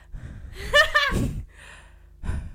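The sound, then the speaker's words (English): A voice imitates loud open-mouthed breathing, mimicking people who breathe with their mouth wide open: a voiced gasping inhale and rasping exhale followed by a quieter breath, with no words spoken. “You don't sit there like, this is what they do. They go...”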